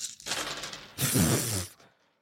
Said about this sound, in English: picking up so many fucking dice right now. You have just big, chunky hands. It's like a cartoonish amount of dice you have.